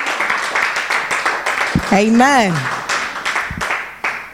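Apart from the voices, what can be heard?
audience clapping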